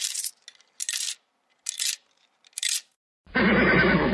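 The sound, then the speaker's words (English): A horse whinnies loudly at the end, a brief, quavering neigh that follows four short, bright, clattering bursts spaced by silence. No one speaks. “A horse is a horse, of course, of course.”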